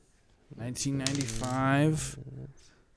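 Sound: dice being rolled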